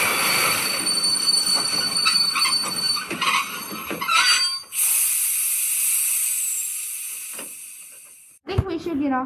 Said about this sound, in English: The train wheels started to squeak loudly as the train stopped quickly.